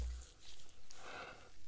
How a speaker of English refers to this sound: Excuse me. I apologize. I'm yawning.